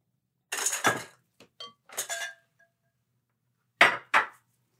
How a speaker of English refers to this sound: But I am going to add my dry ingredients to the wet bowl. And pour that in and then give that a nice good stir. It's going to create a dough-like consistency.